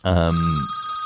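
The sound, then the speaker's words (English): A phone rings once, a loud bright burst with a low buzzy onset that settles into a sustained metallic ring fading over about a second. “And Cameron answering his phone.”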